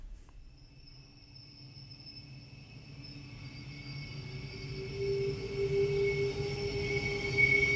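Train wheels squeal in drawn-out, high metallic tones over a low, heavy rumble, the screech swelling steadily louder as the rail cars grind along at the Everly Railway Workshops rail yards in Sydney. No one speaks.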